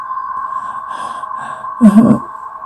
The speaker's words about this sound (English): Hum of helicopter.